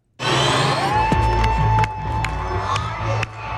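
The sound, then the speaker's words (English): A loud rock concert crowd roars and cheers at the start of the show, with scattered, out-of-sync clapping and whoops, a dense sustained wash of noise with sharp hand claps popping through, while a faint tonal hum sits underneath. “No, that's how everybody was clapping.”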